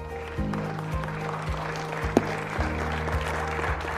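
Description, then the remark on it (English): An audience claps in a steady, continuous wash of applause, with sustained low keyboard chords pulsing underneath at a regular beat. “Clap your hands.”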